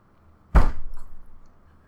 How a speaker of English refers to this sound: She just slammed the table really hard. Yeah. With her knee.